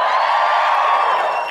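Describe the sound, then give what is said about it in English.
A loud, sustained roar of audience cheering and whoops fills the space, a dense wall of many voices holding steady for a moment before easing slightly, as a show audience in Canberra cheers when asked who is attending for the first night. “Give us a cheer if this is your first night.”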